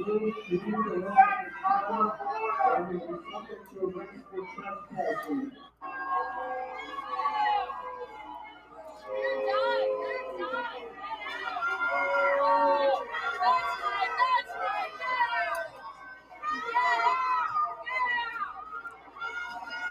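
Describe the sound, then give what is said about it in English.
A large crowd of parents yelling and booing, many raised voices overlapping into a loud, continuous roar with wavering shouts that carry through the whole stretch. “That crowd you just heard booing and yelling, that crowd is full of parents.”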